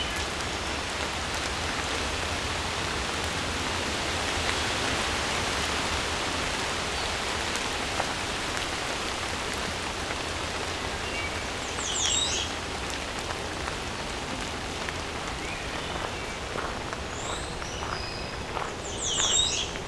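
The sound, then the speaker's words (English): Steady, soft rain patters across the whole scene, a constant hiss with no clear letup, while a few high bird chirps break through in the later seconds. “Often right after the wind, or the rain dying down, wind too, birds will start singing more.”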